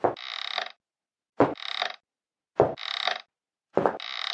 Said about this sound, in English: The wooden floor creaked as he took long strides to the counter.